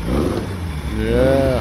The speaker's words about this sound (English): And what I'm doing is sneaking up on a little audio for you guys about what the Mach 11 sounds like. I think I got this here. Let's see here. Oh yeah, this is the motor, the 2276 in the Mach 11.